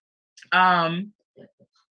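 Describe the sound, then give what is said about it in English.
A pet named Bella lets out one drawn-out, pig-like grunting snort, about half a second long, followed by a couple of faint, short snuffles. “Still sound like a pig.”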